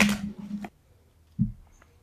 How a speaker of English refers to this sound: You good at shuffling? I mean, I'm all right. I could shuffle if you need me to, you know? All right, it's good. Shuffle, please, because I'm bad.